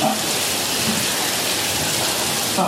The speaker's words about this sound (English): Yeah. You can hear the thunder and the rain.